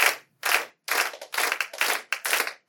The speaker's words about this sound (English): More clapping and looking at each other. People sweating now, really wanting to sit down, mentally cursing at the fool who first mentioned Stalin's name at this event.